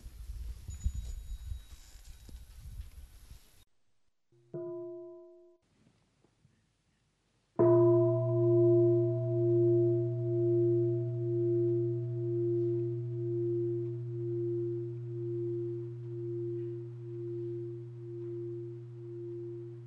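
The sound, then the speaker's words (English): A large bell at a Buddhist Sangha gathering, signalling children to stand, bow to the Sangha and go out, is struck once softly, then a second full strike rings out with a deep, sustained hum and slowly pulsing overtones that linger and fade over many seconds. No one speaks. “So children, when you hear the sound of the bell, you can stand up and bow to the Sangha before you go out.”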